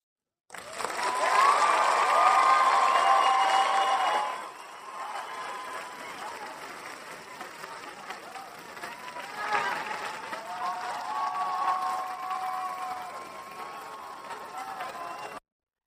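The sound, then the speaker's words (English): A live studio audience that packed the house for a solo recording breaks into loud applause and cheering for about four seconds, then the noise drops to a softer, steady crowd roar with scattered whoops and voices that swell again briefly. “Huge thank you to the live studio audience.”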